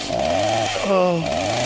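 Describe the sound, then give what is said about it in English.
A chainsaw engine revs loudly and continuously, its whining pitch climbing and dropping in quick surges before settling back to a steady buzz. “But dad comes at you with the chainsaw, you...”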